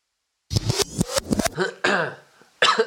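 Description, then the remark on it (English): A loud fit of several harsh coughs in quick succession, followed by a strained, groaning breath and then one more rough cough. “That cough signals... Change the battery.”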